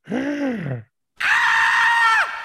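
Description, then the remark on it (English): A person vocally imitates the screaming of swimmers being attacked in a video game: a short, low, falling groan, a brief pause, then a loud, sustained high-pitched shriek that drops off sharply at the end. “And whenever you like go over by all the swimmers and you start attacking them, they're like screaming, and you're, but then you got like, it's like what?”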